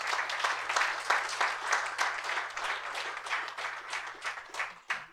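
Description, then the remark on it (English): A group at a recovery-community session applauds everyone who has presented so far, with steady, dense clapping that holds at a fairly even level for about five seconds, with no voices standing out above it. “Yeah, let's applaud everyone who's done this so far.”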